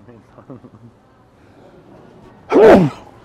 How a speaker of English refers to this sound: I sneezed. Bless you.